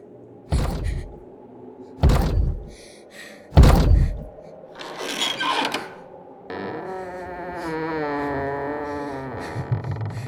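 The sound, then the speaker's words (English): A hardwood bedroom door is struck with three loud, evenly spaced thuds, then scrapes and creaks open, followed by a steady whirring mechanical hum with shifting tones. No one speaks. “As the door to the bedroom opened, Raya hid behind it.”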